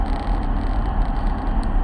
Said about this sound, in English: Traffic's heavy. You know, traffic was really not light until I got right up here on the Esparta Beltway.